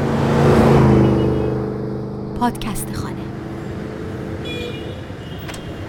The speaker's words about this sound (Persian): در این شهر شلوغ صدای منو میشنوید؟ صدای همدیگر رو بین این همه بوق و سر و صدا و سرسام میشنوید؟